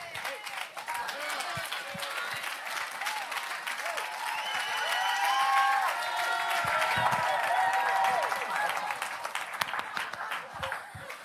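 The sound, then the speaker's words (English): An audience claps lightly and without much enthusiasm for about ten seconds, a steady patter of hands with murmuring voices mixed in, moderately loud. “Look at these cavalier hand claps.”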